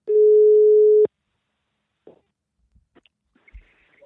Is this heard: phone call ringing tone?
yes